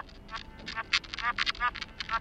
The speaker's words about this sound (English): Just talking to a duck, that's fun.